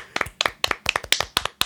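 A short round of applause from just a few people: sharp, steady hand claps in a quick, fairly even rhythm, with no voices over them.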